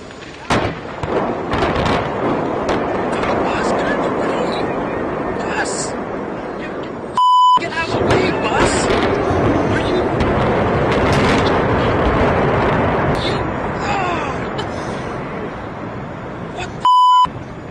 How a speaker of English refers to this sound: Let's start with the implosion of the Georgia Dome. So it was on the Weather Channel. They were trying to cover it. And as soon as they hit the button, the building started to implode and a bus got right in the way of the shot.